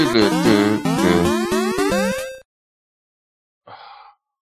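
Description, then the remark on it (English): A bright, buzzy chiptune rendition of the theme from the Nintendo video game Excitebike plays briskly with stacked square-wave melody and bass for about two seconds, cuts off abruptly, then a short breathy gasp follows after silence. “Wait. It is Excitebike. That is correct.”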